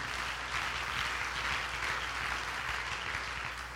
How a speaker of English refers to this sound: In the name of Jesus, clap your hands to the Lord as you're seated.